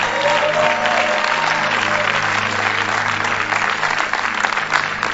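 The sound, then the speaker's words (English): A standing church audience applauds steadily to welcome Bishop Eddie Addy, a dense, continuous wash of many hands clapping at an even loudness throughout, with a faint murmur of voices and a low tone humming underneath. “Put your hands together. Shall we welcome Bishop Eddie Addy? Oh, please keep clapping.”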